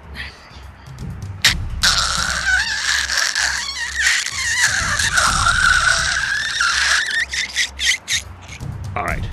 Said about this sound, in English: Okay, Boo-Boo, hand me the night glass cutter.